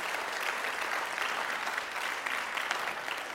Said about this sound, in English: Let's give the Lord a hand clap for what he's done.